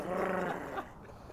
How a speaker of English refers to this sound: the dog is like, he's like, feed me, I'll bite your arm off.